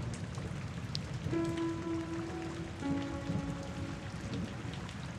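Steady rain patters and hisses throughout at an even level, with a low humming tone rising out of the wash for a few seconds in the middle before fading back.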